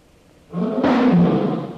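An enormous tiger, hit by a shot but not killed, lets out a loud roar after a brief moment of quiet, a rough, throaty blast that holds steady for over a second with no voices around it.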